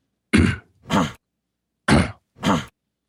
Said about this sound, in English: I like that cough.